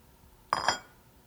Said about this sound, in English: You finished drying the last couple of dishes.